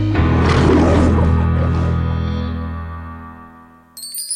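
A single loud lion roar with a deep rumbling growl that slowly fades, followed at the end by a short bright chime.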